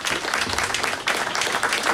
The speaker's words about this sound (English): And finally, but not least, please put a huge round of applause together for the Telegraph's Luke Edwards, also heard on BBC 5 Live.